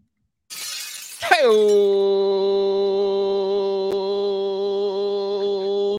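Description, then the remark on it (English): A sudden, loud crash of shattering glass lasting under a second, a sound effect modelled on Stone Cold Steve Austin's glass breaking, followed at once by a long, steady, held tonal note that rings on for several seconds. “That's the Bass and Brews glass shattering.”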